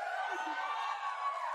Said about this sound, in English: But before we go, the crowd is riled up.